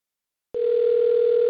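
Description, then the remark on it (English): After half a second of silence, a telephone dial tone from another participant's phone on a group call switches on abruptly and holds as a steady, unbroken electronic hum at a constant, fairly loud level, with no voices. “That's somebody else's phone.”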